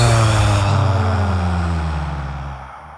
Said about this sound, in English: Exhale with an audible sound for 4 seconds.